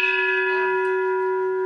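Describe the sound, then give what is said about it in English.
A loud bell rings with a steady, sustained metallic tone that holds evenly for under two seconds, clear, with no voices or other sounds around it. “So let's be ready to do the same thing when Monday's bell rings.”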